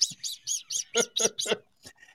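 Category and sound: vocal imitation, person imitating bird noises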